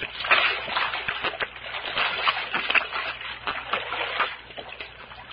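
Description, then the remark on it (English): Continuous splashing and sloshing of water for several seconds, with irregular bursts like hands scooping and people gulping a drink of spring water, lying face down at the water; no clear speech. “Hey, how about us falling on our faces and having a drink, huh? Undoubtedly spring water.”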